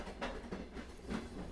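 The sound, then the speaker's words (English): A train carriage rolls along the rails with a steady low rumble, broken by two soft, rhythmic clacks as the wheels cross joints. It sounds muffled and fairly quiet, as if heard from inside. “It was deathly quiet on the train.”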